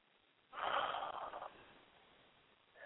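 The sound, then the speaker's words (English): A deep breath is drawn in and pushed out forcefully, a loud, airy whoosh lasting about a second that trails off softly, with no talking. “Taking a deep breath and blow it out.”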